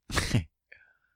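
A single loud, harsh cough into a microphone bursts out, followed by a brief faint throaty rasp that trails off into silence.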